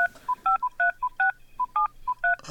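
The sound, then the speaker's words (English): A quick run of touch-tone keypad beeps as a phone number is dialed on a telephone, about eleven short dual-tone presses in an even rhythm, clear with no talking. “Let's just dial that up real quick.”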